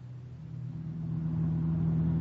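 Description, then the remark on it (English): A car engine hums low and steady, its tone swelling louder as the car pulls away from the airport in Leopoldville and gathers speed, late on a Friday afternoon, with no voices present. “We pile into his car and head out for the Bergerot.”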